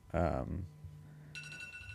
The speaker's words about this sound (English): Yeah, there's your timer.